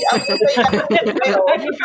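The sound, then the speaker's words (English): A bell rings with bright, sustained metallic tones that hang steadily through the moment, while a person talks loudly and continuously over it. “All right, ringing the bell.”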